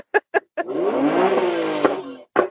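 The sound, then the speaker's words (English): A loud race car engine revs as it roars past for nearly two seconds, its pitch climbing and then falling away, preceded by a few short, sharp bursts and ending with one more. “The race car squad.”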